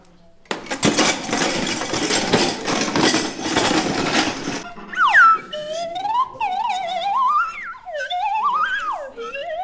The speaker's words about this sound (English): This is called a crash box. It's a metal box full of stuff.